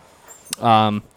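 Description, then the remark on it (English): A single short, tonal dog bark rings out after a faint click, lasting under half a second with no one talking over it. “Sorry, the dogs are going nuts in the background here.”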